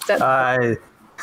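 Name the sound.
sneeze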